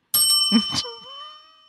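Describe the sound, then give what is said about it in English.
A bright metallic bell rings, struck a few times in quick succession before its clear tone lingers and slowly fades into silence. “That's what that bell's meant for.”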